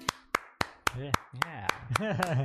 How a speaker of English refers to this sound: Clap for